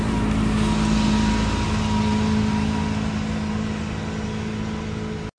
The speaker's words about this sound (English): But what I'm thinking is, we're gonna have to take a break. Got a truck passing by.